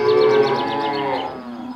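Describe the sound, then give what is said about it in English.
A dairy cow on a dairy farm lets out one long, loud moo, its drawn-out bellow sliding lower and fading toward the end, with no voices around it. “24 hours a day, 7 days a week, 365 days a year, someone, somewhere, is always milking a cow.”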